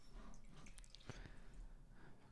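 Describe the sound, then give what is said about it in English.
Liquor is poured slowly into a glass, heard as a quiet trickle with a few distinct drips and splashes over soft background noise. Nobody speaks. “You guys probably heard it, but he's pouring now.”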